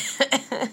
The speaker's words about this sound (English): I'm coughing, but also laughing.